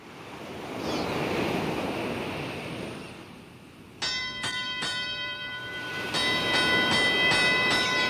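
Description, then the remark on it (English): Steady wash of waves lapping at the harbor of Jaffa, a seaport about 35 miles northwest of Jerusalem, where a docked ship bound for Tarshish is about ready to leave, then three sharp metallic bell-like clangs, followed by a louder, sustained ringing tone over the surf. No voices. “A ship is docked there and about ready to leave.”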